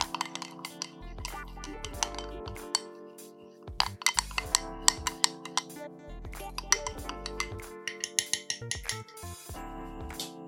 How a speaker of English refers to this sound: So put some milk, got some spices, so that's cinnamon, mixed spice, and I've got some nutmeg. I'm just going to add in the pumpkin and then stir.